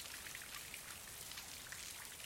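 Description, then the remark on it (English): Steady rain patters down in a dense, even hiss, with scattered brighter drops tapping nearby surfaces. Soft and continuous throughout, with no voices. “Can't even get my fucking cigarette lit. Goddamn rain.”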